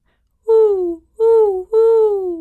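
A voice imitates an owl with three loud, drawn-out hoots in quick succession, each sliding slightly downward in pitch, with no other sound.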